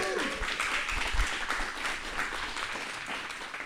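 A crowd breaks into steady, dense applause, many hands clapping at once in a continuous wash of sound that stays fairly even in loudness throughout.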